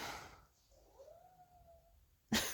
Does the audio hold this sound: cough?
no